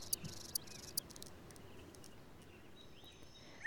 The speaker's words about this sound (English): Again, that was a cricket in summer.